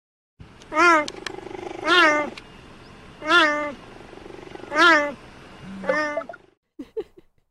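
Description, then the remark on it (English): A series of about five drawn-out, wavering meows at a steady pace, loud, each rising then falling; unlike a house cat's meow, it sounds like a person pretending to be a cat. “They also just do a straight up meow.”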